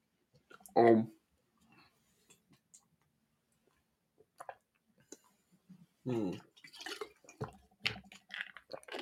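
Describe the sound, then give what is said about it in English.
Sparse plastic clicks and light rattles as a bottle of ibuprofen is twisted open and pills are tipped out, with short bursts of a voice at the start and again near the end. “It's ibuprofen time. We're doing drugs, kids.”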